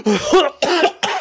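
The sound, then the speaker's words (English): A voice imitates hacking something up: three harsh, throaty cough bursts in quick succession, fairly loud, each with a gurgling, retching edge. “Just coughs shit up.”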